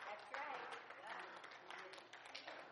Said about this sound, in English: Why y'all applaud that?